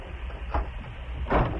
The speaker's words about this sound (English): dropped to his knees and quickly opened the iron door of the safe.